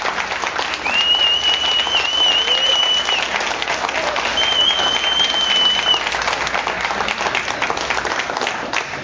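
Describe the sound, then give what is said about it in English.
An audience applauds steadily for about nine seconds, a dense, even wash of clapping that stays loud throughout, with a couple of shrill whistles rising above it, giving another round of applause to Teen Challenge program students after they performed on stage. “If you would, just give these guys one more round of applause.”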